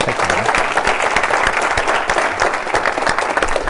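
An audience applauds steadily for several seconds, a dense, even wash of many hands clapping at once with no voices breaking through.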